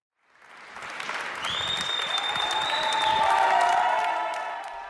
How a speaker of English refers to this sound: Staff lined the road and applauded as the first patients to be discharged from London's NHS Nightingale were driven out by ambulance at the weekend.